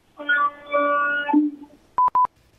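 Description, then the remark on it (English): A single steady, buzzy air-horn blast, apparently from a long-haul truck, lasting about a second, followed after a short pause by two quick, high electronic beeps. No one talks. “It's a quick one, almost like an air horn. I assume some kind of, some kind of long haul truck.”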